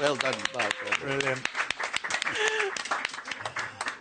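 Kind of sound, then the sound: crowd, round of applause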